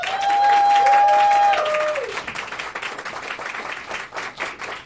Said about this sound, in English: Can we give another round of applause for Tom?